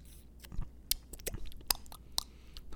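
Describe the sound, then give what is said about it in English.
Quiet sipping of Dunkin' Donuts tap water from a large cup with lots of ice, with a few sharp clicks and rattles of ice scattered through soft wet mouth noises, and no talking. “We'll sip going in.”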